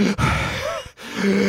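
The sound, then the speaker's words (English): A voice imitates labored breathing: strained, groaning breaths in two or three heavy pulses with brief gaps between, fairly loud, no words spoken. “You guys, with the one on the ground grappling, you feel him like jolt like and then just go limp, and you can hear like that labored breathing, like...”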